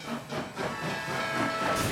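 A steam train sound effect with loud, hissing bursts of steam and rhythmic chuffing, continuous for a couple of seconds, with no voices.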